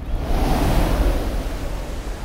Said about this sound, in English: Again, the ghost sped on, above the black and heaving sea.